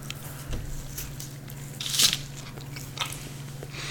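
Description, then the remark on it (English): Someone bites into a soft slice of sausage pizza microwaved for 30 seconds on a paper plate, with a few muffled, squishy crunches and one sharper bite in the middle over a low steady hum, no talking. “This is microwave pizza. We microwaved each slice for 30 seconds on a paper plate.”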